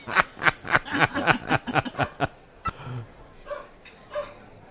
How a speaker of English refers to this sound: we want to tell the dog? Shut the fuck up.